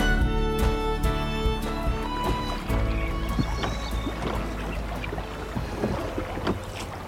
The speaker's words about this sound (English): You're aboard a boat, Breeda. I'm taking you home to be healed.